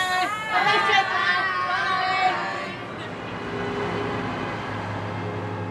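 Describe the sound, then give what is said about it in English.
Excited children's voices chatter together for a few seconds as children board buses to head off to County Meath, then give way to a steady, noisy background rumble with faint crowd murmur. “A few streets across, children from the nationalist area are getting on their buses to head off to County Meath and away from the tension in the city.”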